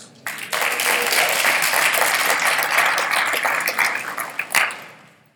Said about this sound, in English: And that's worth shouting about. Maybe that's even worth church clapping about. Right?